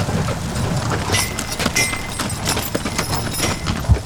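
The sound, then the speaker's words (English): Hooves clop in an uneven rhythm as a horse-drawn wagon starts a ride on a ranch, past the horse corral near the cabins, with sharp knocks and clatters over a steady rolling rumble, moderately loud with no talking. “Yeah, we take the wagon ride past the corral with the horses, and we'll start here close to the cabins”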